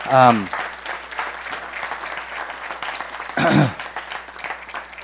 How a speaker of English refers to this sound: give our team a round of applause. A lot of effort and work put into this.